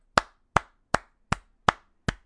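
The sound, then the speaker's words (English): Six sharp hand claps in a steady, even rhythm, each a crisp, bright smack with a quick decay, with no voices over them. “That's a clap.”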